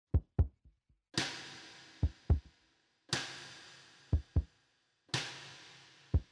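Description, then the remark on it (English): A kick drum, played by a musician recording a song alone, thumps in a doubled, heartbeat-like pattern, two close low beats repeating about every two seconds, between bright crashing cymbal washes that ring out and fade. “Played the drums in bits. I did that heartbeat kick I enjoyed in the past.”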